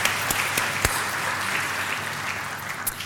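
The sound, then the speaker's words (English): A crowd applauds Troy Swanson at a school, a dense wash of many hands clapping at even loudness, with a few sharper individual claps standing out early and near the end. “Good morning, everybody, and one more round of applause for Troy Swanson and everything he does for this school.”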